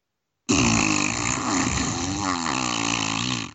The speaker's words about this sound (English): so it's time for me to ride you like a jet ski as you fart. Let's go!